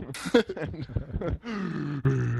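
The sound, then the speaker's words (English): A voice close to the microphone imitates a man breathing heavily into a microphone: a burst of rough huffs followed by two long, groaning breaths, loud and deliberately exaggerated. “he was breathing in the microphone really heavy. The whole episode was like fucking Darth Bear”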